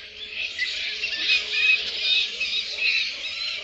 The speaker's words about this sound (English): There are a bunch of flying things in a tree talking to each other. But they're bats, not birds. They are bats.